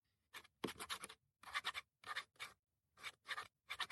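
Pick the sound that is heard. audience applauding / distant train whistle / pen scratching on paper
pen scratching on paper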